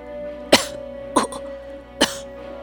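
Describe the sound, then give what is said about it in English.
Three sharp coughs spaced roughly evenly apart, each a short harsh burst, over a faint steady background hum with no talking. “coughed a few times, then spoke in a raspy voice.”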